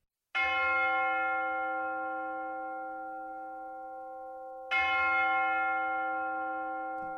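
bell ringing

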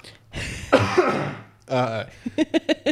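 cough and throat clearing

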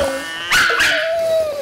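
dog whimpering and barking

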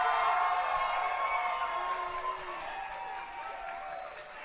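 audience applause

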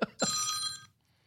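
phone ringing

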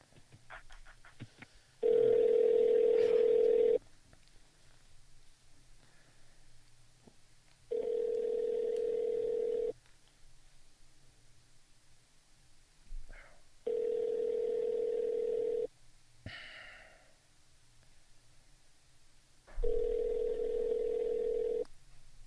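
phone line ringing

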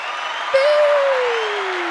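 short applause

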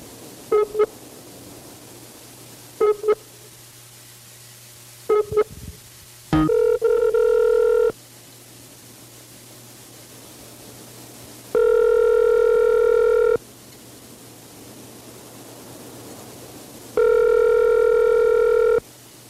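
telephone ringing

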